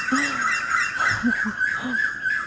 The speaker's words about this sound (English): The bird also wants to say something, but I don't understand what they're saying because I didn't connect with them.